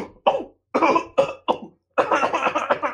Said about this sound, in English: See, that's a very wet, painful cough, but it's also in quite a rhythm. Yeah, I feel like this is clearly the bubonic. I think he's got the bubonic. Or maybe he's just musical.